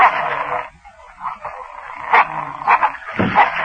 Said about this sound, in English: The hounds. They're sentries.